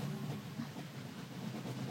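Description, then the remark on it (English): A steady, rumbling train sound effect with a continuous low roar and faint rattling, like rail cars rolling along the track, fairly loud and unbroken for the whole moment, with no voices. “Choo-choo!”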